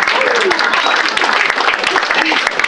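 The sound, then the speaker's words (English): An audience at the Punchline breaks into steady, dense applause, a loud wash of overlapping claps that holds for a few seconds, with scattered voices and a whoop mixed into the noise. “So, Punchline, round of applause for coming out for yourselves when you could be protesting.”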